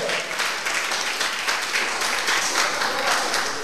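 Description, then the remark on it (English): An audience of Christians at church claps steadily for several seconds, a dense, continuous wash of many hands, with no clear voices standing out. “The Christians are clapping.”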